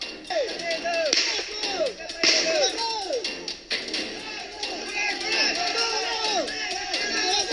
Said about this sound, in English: I want to play a piece of this Spanish news report here, and then we'll come back and we'll translate this and we'll talk about exactly what is happening here. And you can start with this gunfire. Watch.